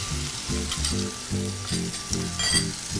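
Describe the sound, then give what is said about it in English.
Steady sizzling and crackling of tomatoes frying in extra virgin olive oil, continuous, with soft scraping and stirring sounds and no voices. “I'm gonna add just a little bit more extra virgin olive oil to help keep the idea of frying the tomatoes in olive oil.”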